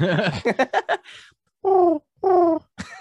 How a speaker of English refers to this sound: Also, I'm just going to state, if anyone hears some weird bird noise, my cat found her toy.